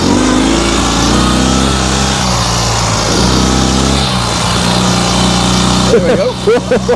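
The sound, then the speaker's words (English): A Ural sidecar motorcycle engine runs loud throughout, its throaty drone rising and falling in pitch as it revs, with a voice briefly audible near the end. “Because if you don't lean left, what I can end up doing is lifting the sidecar.”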